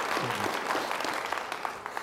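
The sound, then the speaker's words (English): A church audience applauds steadily during a sermon, many hands clapping in a dense, continuous patter, with a few sharper individual claps standing out near the end and a faint voice underneath at the start. “Or any other genuine, you can clap, or any other genuine church.”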